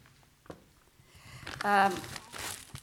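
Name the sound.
plastic bag crinkling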